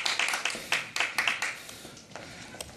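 A small group of people clapping for a speaker who has just finished, a quick run of sharp, bright claps that is loudest for the first second or so and then thins out to a few scattered claps.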